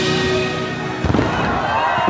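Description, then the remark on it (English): Fireworks at a celebration following a Donald Trump campaign speech go off in a quick cluster of sharp bangs partway through, with a couple of fainter pops afterward, all over a steady wash of outdoor crowd noise and murmuring. “Ahead of a fireworks celebration, Trump told voters November's election could have historic consequences.”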